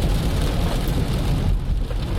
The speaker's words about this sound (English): I hope this isn't too loud with the rain. Love the sound of that, don't you?